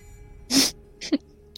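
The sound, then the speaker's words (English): A person makes a sharp, voiced sneeze sound, a strong burst followed by two smaller, quicker bursts, likely a vocal imitation. “And as he sneezes, like you can see this like almost flash of light as like just this like little crackle of energy comes out of his nose.”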